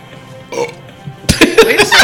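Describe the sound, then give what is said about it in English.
A loud burp after drinking Coke rumbles out for under a second, preceded by a brief softer vocal sound, with no talking. “Was that my first burp?”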